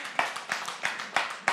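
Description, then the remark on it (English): An audience claps together, with sharp, steady, evenly spaced beats standing out over a dense wash of scattered applause. No voices are heard. “You can clap for that.”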